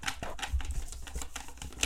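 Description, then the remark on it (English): A box holding a few slips of paper being shaken, giving a steady run of dry, papery rattles and rustles in quick irregular bursts for a couple of seconds, with no talking. “Yeah, it's just a couple boxes of slips of paper in it.”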